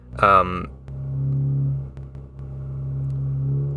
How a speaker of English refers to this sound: Man, that guy's got a loud car. Yeah, I'm recording this in a kind of a loud environment, so sorry about that.